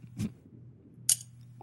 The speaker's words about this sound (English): Oh, that's my wine glass.